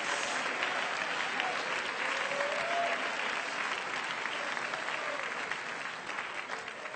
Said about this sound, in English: And would you clap your hands and worship the one that poured His Spirit into you?